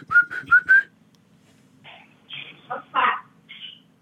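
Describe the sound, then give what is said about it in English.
A male pet bird, asked to whistle, gives four quick, bright rising whistles in a row, followed by a few softer chirps and raspy squawks. “He whistled. Did you hear that?”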